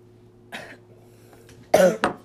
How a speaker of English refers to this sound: This is one I really like, but it's too weeded for me, and so it's always makes me cough the next day. It's probably going to make me cough.